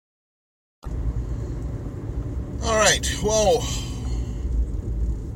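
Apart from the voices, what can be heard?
car interior road noise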